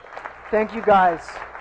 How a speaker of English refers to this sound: So can we celebrate? One last applause. It's amazing.